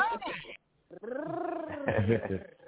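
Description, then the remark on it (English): A person imitates a cat's purr with their voice: two fairly loud, drawn-out voiced bursts separated by a brief pause, the second longer and wavering. “That's all you giving us is a purr.”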